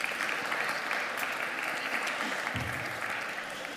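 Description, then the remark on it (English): Steady audience applause for child helpers fills the whole stretch, a dense, continuous patter of many hands clapping at moderate volume, tapering slightly near the end. “Can we have a round of applause for my helpers?”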